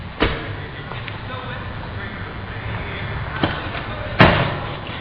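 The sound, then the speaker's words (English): A car door slams into another car with a sharp metallic bang, the loudest hit near the end, after two lighter knocks, over a steady low outdoor rumble. “I know you didn't think anyone would catch you, but you just slammed your door into my car.”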